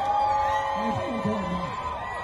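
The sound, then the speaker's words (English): A large crowd cheers a national leader leaving the hospital after being infected with coronavirus, a steady, dense roar with a few rising whoops and shouting voices standing out from the mass of noise. “They are cheering a man who absolutely fumbled coronavirus response in their country, leading to 214,000 deaths and climbing, 10,000 a week.”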